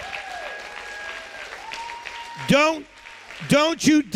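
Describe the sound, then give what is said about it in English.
An audience at a sermon claps its hands steadily throughout, as the preacher asked, while individual voices break out in loud, pitched shouts, one around the middle and a quick cluster of whoops near the end. “Clap your hands and shout like you caught this.”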